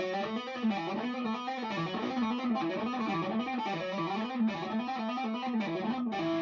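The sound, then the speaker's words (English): A distorted electric guitar plays a fast, smooth legato run of hammer-on notes in E minor on frets 7, 9 and 10 of the A and D strings, the pitch climbing and falling in steady repeating groups at an even, fairly loud level with no talking. “I find that sometimes gives me a bit of a harder kind of hammer down and sound, and then moving upwards.”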